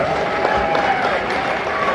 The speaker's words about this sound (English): Give her a round of applause, guys.